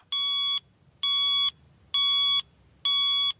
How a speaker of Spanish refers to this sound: Ayer mi día comenzó a las 7 de la mañana. El despertador sonó y despertó a todo el mundo. Lo programé para que saltase a los 5 minutos, pero esos 5 minutos se convirtieron en 30 minutos más.